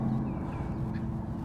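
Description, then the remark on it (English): Seagulls calling faintly, a few brief cries rising over a steady, dense outdoor rumble that fills the background throughout, on a bright, sunny morning under a clear blue sky. “Quite a lot of seagulls misdirected. Seagulls today.”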